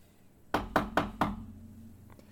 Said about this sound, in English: A rapping at the door spooked Dorian out of her sleep, causing her to grasp at the edge of her sheets.